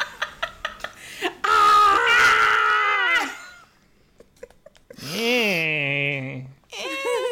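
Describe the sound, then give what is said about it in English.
A few quick clicks, then loud, drawn-out screaming: one long shrill wail, a pause, then a second wavering scream sliding down in pitch, followed by a brief shriek. “I don't know what we're yelling about.”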